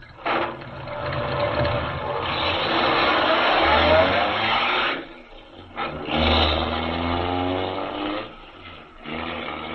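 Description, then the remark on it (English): A car engine revs and accelerates in two loud surges with a short lull between, the motor roaring as the car speeds away from an inn. “Speeding away from the inn, Major Carroll is unaware that the wily Gottfried has sent him on a false trail”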